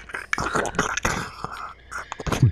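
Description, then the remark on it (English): Wet mouth noises with muffled smacks and gurgling clicks, a person vocally imitating what a microphone would sound like if someone had swallowed it, with no clear words. “I just wanted to recreate what the microphone would actually sound like if he had swallowed it.”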